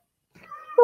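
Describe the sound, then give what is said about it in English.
A single short cat meow, beginning as a soft whine and swelling into a loud, bright cry at the very end, with no talking around it. “Just to let you know, I didn't want this damn cat, but I had to buy it to keep the peace.”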